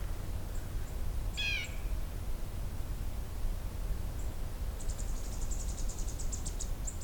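On a trail, a single harsh, descending call rings out from one of two male blue jays arguing, over steady outdoor hiss, followed later by a faint, rapid series of high chattering notes.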